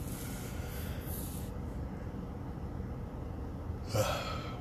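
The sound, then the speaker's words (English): A long, breathy yawn, drawn out over several seconds with a sharper gust of breath near the end; no one speaks. “Pardon me for the yawn.”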